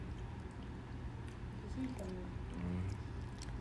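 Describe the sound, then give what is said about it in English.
Crunching and chewing of food, with repeated short crisp bites over a steady low rumble and a faint muffled voice in the background. “Hey, don't mind all the crunching.”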